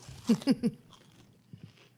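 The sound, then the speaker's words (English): A bite into a crunchy oven-baked chicken tender, three loud crackling crunches in quick succession, followed by a couple of softer chewing crunches after a brief pause. “I mean, listen to that. Still crunchy.”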